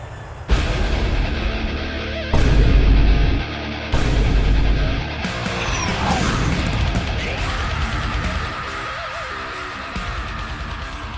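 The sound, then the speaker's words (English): A short, loud musical jingle introducing a listener questions segment, with heavy bass and dense, punchy sections that shift abruptly a few times, playing alone before the talking resumes. “Every time I hear that song.”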